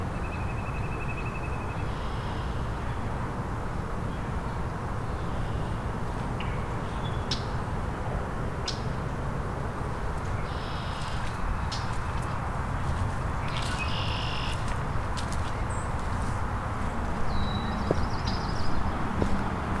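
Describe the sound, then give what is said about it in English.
A northern flicker calls several times, short high-pitched notes repeating at irregular intervals over a steady, heavy low rumble of background noise. No one speaks. “Northern flicker is very vocal today.”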